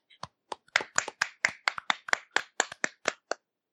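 A short burst of applause from what sounds like just a few people, sharp, close claps in an uneven rhythm lasting a few seconds, with no talking over it.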